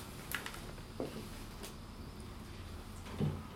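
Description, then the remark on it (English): A kitchen door is pushed shut: a few soft knocks and scrapes, then a firmer thud at the end, all over a steady low hum of a fridge motor, with no talking. “And before we go any further, I'm going to shut the kitchen door, because the noise of the fridge motor is picking up on the microphone, so bear with me 2 seconds.”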